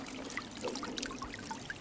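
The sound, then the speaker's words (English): Water sloshes and splashes steadily as two people wade through the cool water of a pond at Great Meadows, Massachusetts, to check a turtle trap, with small irregular drips and gurgles over a continuous churning wash. No one speaks. “wade through the cool water to check another trap.”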